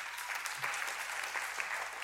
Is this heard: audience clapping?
yes